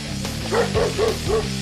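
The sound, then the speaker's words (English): A dog barks four times in quick succession, short high-pitched yaps evenly spaced over a steady low hum, moderately loud. “The symbol is WOOF, W-O-O-F. WOOF, WOOF.”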